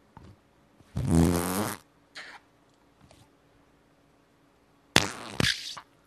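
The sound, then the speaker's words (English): A loud, buzzing fart-like squelch from a squeezed slime toy lasts under a second, followed by a few faint squishes and then a second, sharper wet squish near the end. “Maniacally at the fart sound.”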